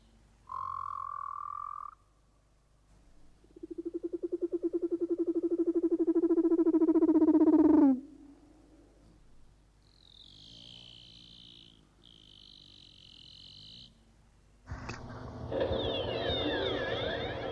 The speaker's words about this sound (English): Finally, a contribution from those other marine mammals, the seals. First, the fierce Antarctic leopard seal, followed by the songs of the gentler Ross and Weddell seals.